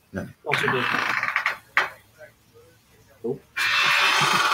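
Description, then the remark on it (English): A door creaks open in loud, drawn-out squealing groans, stopping and starting in several uneven bursts, then a rush of steady noise at the end. “That was my door.”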